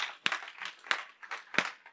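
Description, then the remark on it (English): A group claps together, with three sharp, louder claps standing out at a steady beat over a softer, scattered patter of hands. No one speaks. “Come on, if you're going to clap, clap.”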